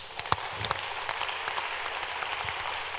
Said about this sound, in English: Clap for Jesus.